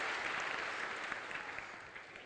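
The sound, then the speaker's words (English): A church audience applauds all the mothers with steady, dense hand clapping, a continuous wash of many overlapping claps that holds fairly even in loudness and tapers slightly toward the end, with no voices standing out. “Let's give all the mothers another hand clap.”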